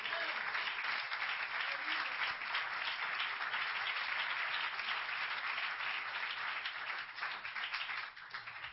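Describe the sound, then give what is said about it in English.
A church audience claps their hands in sustained, dense applause when the preacher asks those who believe the word of God to clap, a steady loud wash of many overlapping claps lasting several seconds before tapering slightly at the end. “If you believe the word of God, clap your hands right now.”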